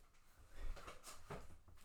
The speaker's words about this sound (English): fucking stool, dude. Squeak, squeak, squeak.